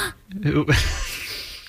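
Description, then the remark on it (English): A person gasps sharply, a brief voiced catch of breath that trails into a breathy, fading exhale. It is loud and stands alone, with no words spoken. “Why are you gasping?”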